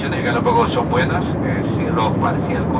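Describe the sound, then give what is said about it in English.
A steady, loud engine drone fills an airplane cabin on a flight from Quito to the Galapagos, a constant low roar with muffled voices murmuring faintly over it throughout. “This is Radiolab, and today we begin on a plane.”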